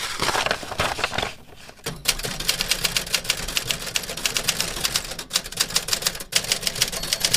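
Rapid, uneven clacking of the keys of a Smith Corona Sterling manual typewriter, a model made in 1949, fairly loud, with brief pauses and occasional heavier strikes or carriage movements, no voices.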